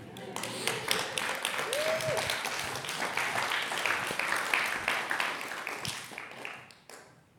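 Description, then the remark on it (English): An audience bursts into sustained applause after a sermon: dense, steady clapping from many hands for about seven seconds, with a brief whoop early on, before it tapers off abruptly. “The first time anybody's ever clapped at a message on offense that I've ever.”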